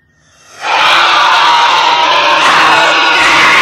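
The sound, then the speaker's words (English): A piercing, inhuman shriek from Donald Sutherland, pointing, at the end of a movie, rises abruptly after a brief quiet moment and holds at full, harsh intensity for about three seconds, loud with no talking. “See Donald Sutherland point and just start shrieking, which to let you know that they actually did, he did fall asleep and he was replaced, and that's the end of the movie.”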